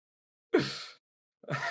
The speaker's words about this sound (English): Excuse me. Allow me to clear my throat for a second.